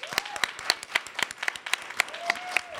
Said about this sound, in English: Before we start, I want to give a huge round of applause and thanks to our wonderful cast and our musicians for tonight.